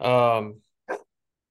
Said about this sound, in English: Was Melky barking? Yeah, he's old and grumpy, dude. He just barks at me now from the top of the stairs.